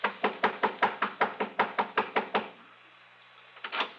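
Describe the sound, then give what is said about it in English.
Heavy pounding on the front door of a home in Lakewood: about a dozen loud, evenly spaced knocks in quick succession, a short pause, then a final couple of knocks. No voices. “Within the hour, I was pounding on the front door”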